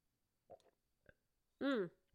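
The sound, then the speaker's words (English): Two short, soft swallowing sips of water half a second apart, followed by a louder voiced, satisfied sigh with a falling pitch. “Two big sips.”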